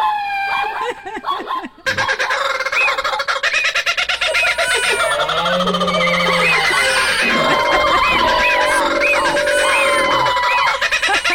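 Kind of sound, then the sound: animal, zebra call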